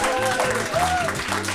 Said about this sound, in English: Yeah, round of applause for that.